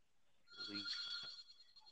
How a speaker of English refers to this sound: Yeah, that's phone that's ringing in the background.